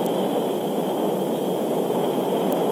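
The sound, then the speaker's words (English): A steady, loud roar of rocket engines at liftoff at 9:34 a.m. Eastern Daylight Time, a dense rumbling wall of noise heaviest in the low and middle range, holding constant throughout with no voices. “8, ignition sequence start, engines on, 5, 4, 3, 2, 1, all engines running, launch commit, liftoff, we have liftoff at 9:34 a.m.”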